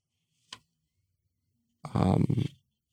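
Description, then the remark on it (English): A single tap, then a brief burst of sheets of paper being rustled and shuffled for about half a second. No one speaks. “I got so much paper.”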